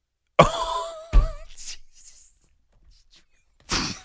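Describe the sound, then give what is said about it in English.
A person clears their throat with two quick, harsh bursts, followed by a softer breathy rasp and then one more short throaty huff, fairly loud with no speech. “you hear that all the time, clearing of the throat.”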